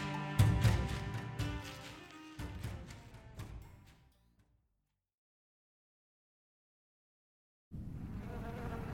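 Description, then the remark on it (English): Loud buzzing of bees with a rich droning hum that swells and fades away, then after a few seconds of silence the buzzing abruptly returns at full strength. No one speaks. “We've been told for so long that the bees were disappearing.”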